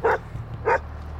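A dog gives two sharp, mid-pitched barks about half a second apart at a compound with a house and outbuildings, over a steady low rumble of a truck idling inside a drive shed.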